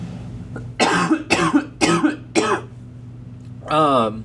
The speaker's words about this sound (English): I'm going to cough away from the microphone now.